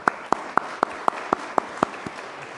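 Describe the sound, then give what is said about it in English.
A brief round of applause welcoming a new pastor on his first Sunday at a church service: about nine sharp, evenly spaced claps in a steady rhythm, fairly loud, with no talking over them. “So let's give him a brief round of applause.”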